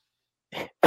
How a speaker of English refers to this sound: Sorry, I was like trying to get my thought out and then a cough came out.